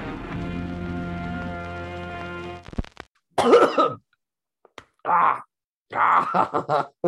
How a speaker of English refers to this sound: Sorry. No, that's all right. I knew, like, I should have just done it right before we started, but, like, it suddenly... No, yeah. Oh, shit, I gotta clear my throat.